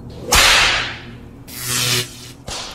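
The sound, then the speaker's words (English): Three sharp whip cracks in a radio drama, the whip held by the Witch Queen Azora and used on Dale Arden, loud, each a sudden snap with a brief hissing tail; the first two are spaced about a second apart, the third comes quickly after. No voices. “Her clothes torn and skin reddened by the whip held in the clutches of the cruel Witch Queen Azora.”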